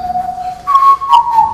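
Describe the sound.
A person whistles a short tune they just made up, alone, a steady note stepping up to a higher sustained pitch with a slight waver, clear with no talking.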